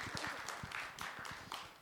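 An audience applauds steadily, a continuous patter of many hands clapping at a modest level that holds for the whole two seconds without anyone speaking.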